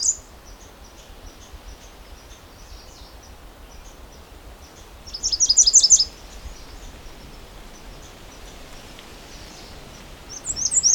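A red squirrel calls with short bursts of rapid, high-pitched chattering, loudest around the middle and again at the end, over soft outdoor ambience and faint repeated chirps.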